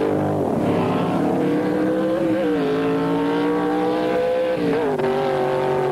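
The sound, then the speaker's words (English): Loud, steady roar of drag racing cars launching down the strip, a B Factory Experimental car against a modified sports car in an elimination heat. Harmonic tones rise and shift in pitch as they rev and accelerate, continuous for several seconds with no talking. “The B Factory Experimental takes the modified sports car, and the stage is set for the final elimination.”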